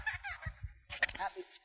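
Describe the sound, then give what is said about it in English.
A monkey chatters in quick, squeaky bursts and then lets out a harsh, shrill screech lasting about half a second. The calls are fairly loud, with no talking. “Happy monkey again.”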